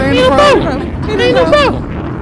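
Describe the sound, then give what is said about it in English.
Two bomb-drop effects in quick succession, each a falling, tonal whistle that slides downward into a loud, rough burst of noise, with a steady rumbling noise underneath. “I ain't gonna run no applause, but I got a bomb.”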